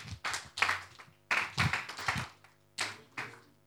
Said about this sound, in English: You need to clap your hands.